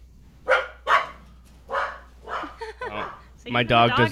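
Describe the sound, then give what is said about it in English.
A dog barks sharply four or five times in an irregular, agitated series, fairly loud, before a voice briefly cuts in at the end. “My dog does not like mispours.”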